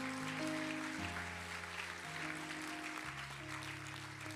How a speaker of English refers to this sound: If you believe that, clap your hands to the Lord one more time.